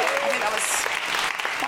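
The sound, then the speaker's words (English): An audience applauds in a dense, steady wash of clapping that holds at an even loudness for the whole short stretch, with a faint tonal voice or whoop near the start. “If you feel moved by the spirit to give a round of applause at any time, don't hold back.”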